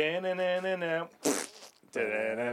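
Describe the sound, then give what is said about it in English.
A loud, buzzy fart sound plays, followed by a short breathy burst and then another sustained buzzy blast, with no talking over it. “I think it should just be after the fart.”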